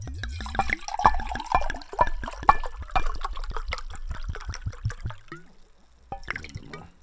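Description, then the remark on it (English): Liquor glugging steadily into a glass, a rapid run of hollow gurgles that slows and thins out, followed by a brief pause and a short final splash. “Shit, man, pour up that libation, homie.”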